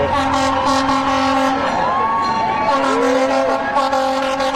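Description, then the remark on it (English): A fire engine siren wails loudly, its pitch sweeping up and down over steady horn-like tones and rumbling traffic noise as the truck goes past. “Now, if we slow it down, we can probably see which engine that is. I'm guessing it's engine 1 or engine 6, but one of the downtown.”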